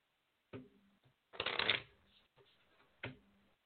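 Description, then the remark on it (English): Tarot cards being shuffled: a sharp riffle, a longer rustling burst of cards sliding together, then another quick riffle, with short quiet gaps between. “I am shuffling”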